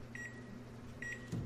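A microwave oven hums steadily, and twice its short high-pitched electronic beeps chirp out in quick double pulses over the droning motor, followed by a soft clunk.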